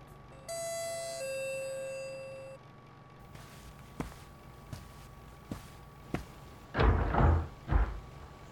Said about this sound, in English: so I answered the door myself.